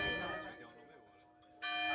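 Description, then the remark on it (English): A loud church bell rings right above a rented apartment, with rich sustained overtones, its tone slowly decaying before a second strong strike sounds near the end. “I just want to note that the bell appears to be right above our Airbnb.”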